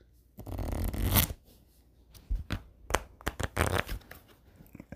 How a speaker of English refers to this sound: So before we get into the episode, you know I gotta do the shuffling of the cards, you know what I'm saying?